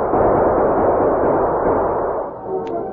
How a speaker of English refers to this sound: The sheriff and his posse galloped into the gunfight, firing as they rode. For a few moments, the outlaws battled furiously.